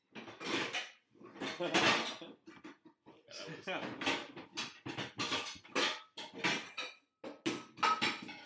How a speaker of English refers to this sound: I'll be banging on the pans in the kitchen.